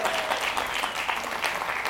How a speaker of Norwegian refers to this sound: Og så klapper litt. Ja.